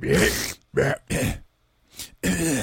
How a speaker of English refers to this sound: I've been coughing all the way through it. I'm going to try and cut them all out. Sorry, guys.